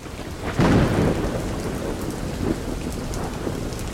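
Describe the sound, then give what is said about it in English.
A loud rumble of thunder rolls in over steady heavy rain during a storm at a tented camp site, the rain pattering densely on surfaces throughout. No voices are heard. “Our whole camp was basically torn apart by the first storm that we had, and that was our very first day, our very first full day on site.”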